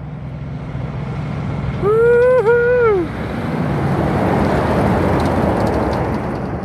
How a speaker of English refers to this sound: Going to wait for these vehicles to go past because I'm on a road up in the Pilbara. Here comes a road train. Check it out.